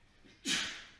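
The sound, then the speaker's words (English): A single sneeze: a brief throaty catch that bursts into a loud, sharp hiss, then fades over about half a second. No one speaks. “Gesundheit.”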